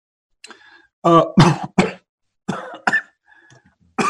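A person coughs several times in short, harsh bursts, two clusters of rough hacking coughs separated by brief pauses, fairly loud, with a bit of throat clearing in between.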